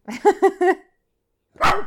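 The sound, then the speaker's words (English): A dog barks four times in a quick, steady burst, falls silent, then lets out one more sharp, noisy bark. The barks are loud, with no talking. “God damn it, Frisbee. Shut up.”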